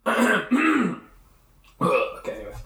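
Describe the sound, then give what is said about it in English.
Someone clears their throat with two quick, rough, voiced rasps, pauses for a moment, then gives a longer, gravelly hack. The sounds are fairly loud, with no talking. “You got a frog in your throat? Yeah, pretty much.”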